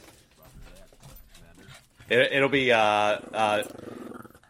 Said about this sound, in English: Oh my god, puppy.